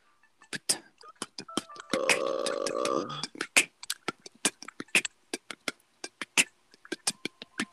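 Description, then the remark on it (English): A short electronic waiting-room groove played by a phone app while waiting for people to join: crisp, clicky percussive ticks in a loose rhythm, with a sustained buzzy synth chord swelling in for about a second partway through. No one speaks. “That little waiting for people to join you groove is so pleasant.”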